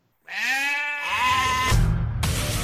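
A lamb lets out one long, quavering bleat lasting over a second, followed by a rough, noisy rumble and a brief hissing burst at the end.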